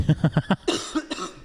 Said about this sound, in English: Yeah, sorry, bro, I got a cough.